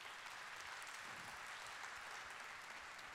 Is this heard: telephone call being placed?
no